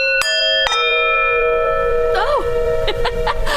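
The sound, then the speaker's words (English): A clock chimes at 3 p.m. with two bright, resonant strikes in quick succession, their tones ringing out and lingering as brief voice-like sounds emerge toward the end. “The doctor's recall was set for mid-afternoon, and as the clock chimes 3 p.m.,”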